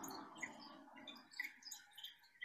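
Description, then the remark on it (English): Faint birds tweeting outside, a scattering of short high chirps at irregular moments over a soft, steady low rumble of passing traffic, with no one speaking. “Sounds in and outside the room. Passing traffic, birds tweeting.”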